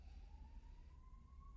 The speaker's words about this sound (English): Can you guys hear the sirens? I live downtown, so there's sirens sometimes.